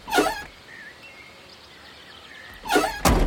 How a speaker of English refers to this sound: The handle on the passenger door of my truck is tricky, and I yank it open for you.